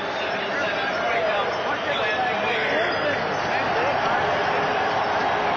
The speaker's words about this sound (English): That's cheering in the background for Glenn Weir's selection. I think it may have been Edmonton.